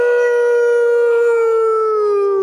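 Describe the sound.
A male caller from Virginia to an ESPN sports radio show imitates a wolf howl, one long sustained tone held loud and steady for a couple of seconds, then sliding slightly downward at the end.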